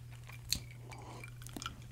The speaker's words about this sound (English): I'm going to take another sip of whiskey while I do this.